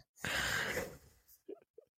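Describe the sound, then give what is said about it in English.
A person fakes a snore with one loud, rasping, throaty breath lasting about a second, followed by a couple of short, soft vocal sounds. “That was a fake snoring sound.”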